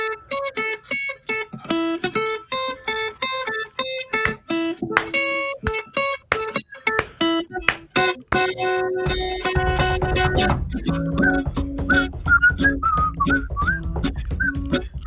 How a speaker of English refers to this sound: Please hold while Joe Suchere is on the phone. We'll play a little transitional music. Can you hold, please?